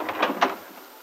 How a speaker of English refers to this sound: Later, as Peggy opens the front door at Aunt Mary's.